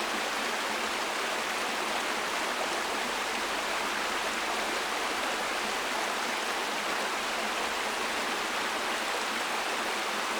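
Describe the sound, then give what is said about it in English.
A steady rush of a flowing stream of clear water, bright and hissy, continuing evenly without pause or voices for the whole stretch. “A gorgeous sound of clear water that keeps us alive.”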